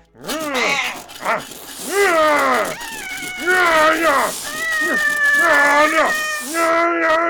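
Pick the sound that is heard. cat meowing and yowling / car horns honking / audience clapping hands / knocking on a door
cat meowing and yowling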